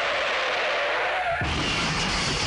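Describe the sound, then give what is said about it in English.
A loud car sound effect: a sustained hissing roar of engine and tire noise that drops into a deeper rumbling surge about halfway through, with no one speaking. “Don't play the car.”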